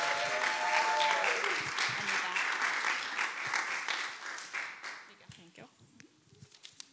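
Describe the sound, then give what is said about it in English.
A church audience claps steadily for several seconds at a morning service as a woman comes up to teach, a dense burst of applause that gradually thins out and fades, with a few scattered claps and shuffling near the end. “So give her a round of applause as she comes up.”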